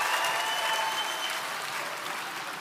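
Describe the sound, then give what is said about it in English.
An audience applauds steadily for a few seconds, answering a call for a show of applause and hallelujah: a dense wash of clapping with faint cheers mixed in, holding loud and even before easing slightly at the end. “How many of you, just by a show of applause and hallelujah, how many parents would love to have that kind of thing happening in your house?”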